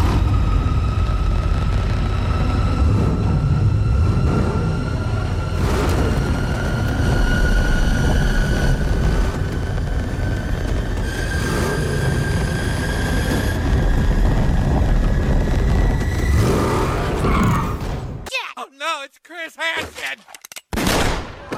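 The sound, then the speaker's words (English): A powerful muscle car engine in a film revs hard and loud as the car is revealed, a sustained roaring growl with rising pitch and rumble, before it cuts away to a brief voice at the end. “But then it does this epic, like, revving of the Batmobile, and this is the big reveal for the Batmobile.”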